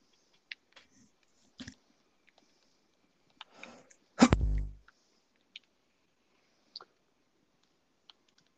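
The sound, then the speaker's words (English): A single loud sneeze bursts out partway through, preceded by a quick sniff and surrounded by faint scattered clicks and small mouth noises in otherwise quiet surroundings, with no talking. “I do have to say, bless you, first of all.”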